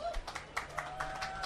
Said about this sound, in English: Y'all give her a round of applause.